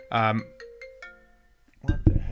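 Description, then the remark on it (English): A phone ringtone from an accidental incoming call plays a short electronic melody, a bright burst followed by softer sustained tones, and then a person starts talking over the end. “I think you accidentally tried calling you on my phone.”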